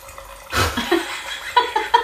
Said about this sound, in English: This is... I've just used a Corvin. So this is a system where a surgical needle goes through the cork of the wine... There's a tiny little canister of argon gas. So you press a little button,